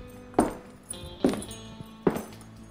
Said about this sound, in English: Yeah, the spurs sort of clanking as two men walk in.